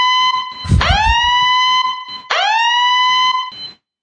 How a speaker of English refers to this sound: oh my gosh, wait, I should sound the alarm. Here it is.